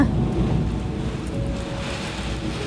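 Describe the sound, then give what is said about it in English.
Steady, dense rainfall hisses across the whole stretch during the rainy season in Thailand, with a low rumble of thunder rolling underneath. The downpour stays even and fairly loud throughout, with no voices present. “Welcome to the rainy season.”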